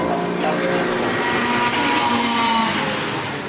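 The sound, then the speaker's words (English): Race cars, including a Golf, roar past on a track, a dense, steady wall of engine noise with whining tones that shift slightly as the vehicles go by, fairly loud throughout. “Had lunch, sitting here, drink, just watching the cars go past.”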